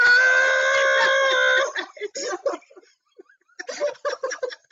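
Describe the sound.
A woman lets out a loud, sustained scream, reenacting her shriek on a ride, for nearly two seconds, then breaks off into choppy laughter and broken vocal sounds.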